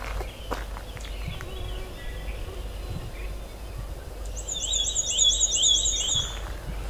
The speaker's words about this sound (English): Black and white warbler.